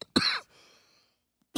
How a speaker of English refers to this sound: Go ahead. Live coughing.